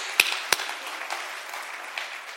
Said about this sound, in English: Give yourselves a hand clap for being here. Come on.